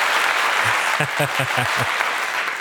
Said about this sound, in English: Let's clap it up one time for that.